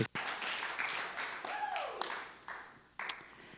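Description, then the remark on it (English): An audience cheers and claps to welcome a speaker up, a dense wash of steady applause with a few raised voices and a brief whoop rising over it, then a final sharp clap near the end. “You guys can cheer.”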